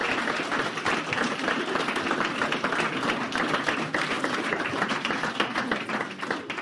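An audience bursts into a sustained round of applause, dense overlapping claps at a steady, fairly loud level throughout, with no talking over it.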